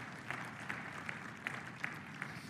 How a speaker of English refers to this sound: Can we pause and give one loud clap offering of praise to our Lord God?